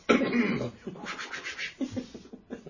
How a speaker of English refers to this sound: You cough in a very kind of superhero way.